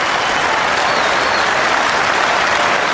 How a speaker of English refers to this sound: Well played, Kane Williamson. First time at Lords. 100 on his first test match here and getting a great applause. It's been a fantastic innings.